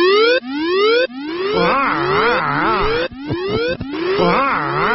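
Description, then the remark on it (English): A loud alarm sound effect: repeated rising electronic whoops, each sweeping upward in pitch about once a second, layered with warbling, wavering tones. No voices, just the blaring alarm throughout. “We should probably test the alarm in case anybody mentions the T word or the I word.”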